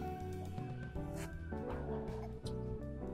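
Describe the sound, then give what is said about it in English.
A dog outside lets out a continuous run of loud, shrill yelps and whines, the pitch jumping from one note to the next with no pauses and no talking. “Somebody's dog is screaming outside.”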